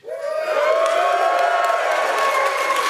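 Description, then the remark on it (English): A live audience at a recording cheers and shouts loudly, a dense roar of many voices with high whoops rising over it, sustained at full volume for about three seconds with no speech. “So you're going to let the people at home hear you, and you got to be loud.”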